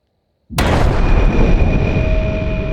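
A sudden, loud explosion at a police station in fog bursts in after a moment of near silence, then a heavy rumbling roar sustains and lingers without fading, with a faint steady ringing tone beneath the blast.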